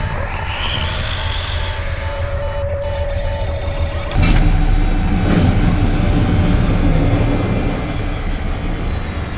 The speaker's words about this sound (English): That sounded marginally less catastrophic. Yeah. Engine's holding, Commander, but still no dice on the life support.